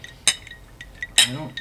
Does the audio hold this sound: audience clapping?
no